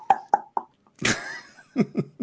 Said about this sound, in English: you can hear some knocking coming from your right, from this big iron door to your right.